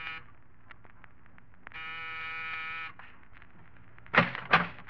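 An apartment door buzzer is pressed once in the corridor of an apartment building in New York's East 70s, giving a steady electric buzz lasting just over a second, followed a moment later by two sharp, loud clunks.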